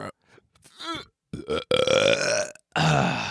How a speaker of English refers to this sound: Just take a big ass belch. Big old belch.